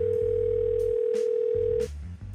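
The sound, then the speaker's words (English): A steady telephone line tone hums over low rumble, broken by a few soft clicks as someone picks up the phone, then cuts off abruptly as they immediately put it down, leaving a faint line noise. No one speaks. “It sounded like someone had picked up and immediately put down the phone.”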